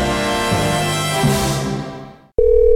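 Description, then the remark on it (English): A telephone starts ringing with a loud, steady electronic tone right after some music fades away, cutting in abruptly near the end. “I was afraid to answer the phone.”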